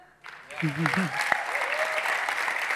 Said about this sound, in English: Hey, come on, let's give them a massive round of applause.